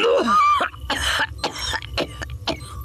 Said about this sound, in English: More coughing, thicker now.